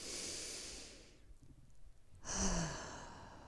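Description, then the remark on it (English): A long, deep inhale drawn through the nose, a brief pause, then a fuller, airy exhale released through the mouth like a sigh, fairly quiet, with no talking. “Breathe in through your nose and then breathing out through your mouth.”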